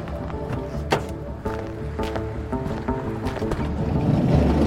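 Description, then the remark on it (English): A voice imitates a vehicle pulling over, a steady rumbling hiss with a few sharp clicks, then mimics a van's sliding door with a rising, rushing noise at the end. “Van door? Love it. Yeah, sliding door.”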